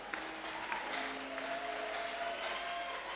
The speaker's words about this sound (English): Sit down. Clap your hands for the Lord.